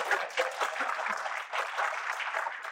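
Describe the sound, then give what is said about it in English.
An audience claps steadily for a few seconds at the mention of the show Land of the Lost, a dense patter of many hands at fairly even loudness with no voices standing out. “So the ones who didn't applaud.”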